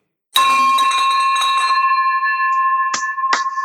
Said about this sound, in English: Ring that bell.